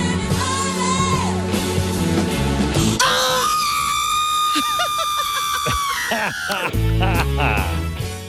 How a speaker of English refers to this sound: By the way, …, of course, has retired from singing, but her scream inspired fans to send in drops of her scream mixed into famous songs. And I'll play.